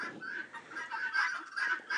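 Domestic chickens or similar fowl cluck and murmur continuously, a steady, moderately loud flock chatter with overlapping calls and no other sounds.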